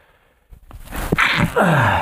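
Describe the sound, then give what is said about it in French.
A few quick, gasping inhales build up before a single loud sneeze bursts out, trailing off into a drawn-out voiced exhale. “Bienvenue à l'éternuement de la journée.”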